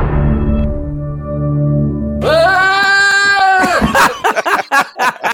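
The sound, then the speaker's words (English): A deep, booming two-note streaming-service intro tone gives way to a loud, drawn-out bleat of a real goat, added at the end of the intro, lasting over a second, followed by a person starting to talk. “So what I've done is I've actually created it with the goat sound at the end. I'm not me doing it. This is an actual goat.”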